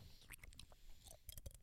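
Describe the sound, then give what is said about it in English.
Wet chewing of three carbonated fizzing candies, with crackly, crunchy bursts and faint popping, a steady series of bites and clicks with no talking. “you hear that? They're carbonated. I chewed three.”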